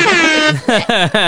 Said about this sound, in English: Get ready to put your finger on the air horn. Are you ready?